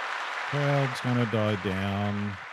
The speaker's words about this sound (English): Yes, and the crowd's going to die down.